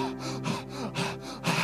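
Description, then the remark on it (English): A voice imitates a deer panting: three harsh, breathy huffs in quick succession, with a steady low hum underneath. “You know how the deer is panting?”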